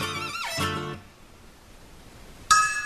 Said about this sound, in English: I think there's a bell that rings here.